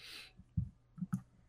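Sparse, soft keyboard typing: four or five quiet, uneven taps, close by, after a brief breathy hiss at the start. Nobody speaks.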